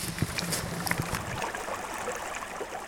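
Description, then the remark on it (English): Steady rush of flowing river water around an angler wading in cold water while fishing, with small splashes and gurgles scattered through it, continuous and moderately loud, with no voices. “Just standing here in cold water, waving a stick back and forth, waiting for something to tug on the other end.”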